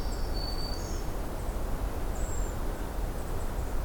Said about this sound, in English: watching a brown creeper right in front of me climb up a cedar tree. You can hear the seep, high-pitched call from another brown creeper nearby.